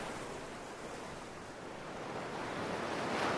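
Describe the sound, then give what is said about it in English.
Steady ocean surf washes onto a beach, a broad hissing roar that swells slightly louder toward the end, with no voices present. “Let's check out the beach.”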